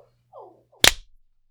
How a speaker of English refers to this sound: I've hit record. As have I. Clap. Yep.